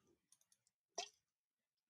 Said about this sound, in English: There's a lot of clicking over there. What is happening? I was just highlighting some shit.